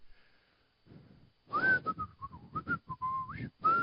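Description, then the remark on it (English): A person whistles a quick, chirpy bird-like tune, with short warbling notes, slides and trills in an irregular rhythm, after a brief quiet start. “Whistle.”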